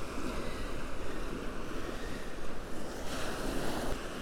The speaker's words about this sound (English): I'm expecting rain today, and it's a pretty blustery start to the day, as you can probably hear.